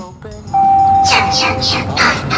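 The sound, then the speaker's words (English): A bell rings out in a quick ding-dong, ding-dong pattern: four bright, evenly spaced strikes over a steady sustained tone, loud. “Ding dong, ding dong. The little train rumbled over the tracks.”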